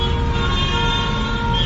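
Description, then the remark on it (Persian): Many car horns blare at once in a loud, unbroken chorus of overlapping tones, sounded by protesters in their cars in a "Woman, Life, Freedom" horn protest at Azadi Square in Kerman, layered over the low rumble of crowded street traffic, with no one speaking. “بوق زن زندگی آزادی، میدان آزادی کرمان.”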